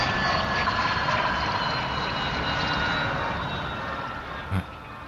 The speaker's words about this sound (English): Helicopter and a plane. Oh, I don't know what that is.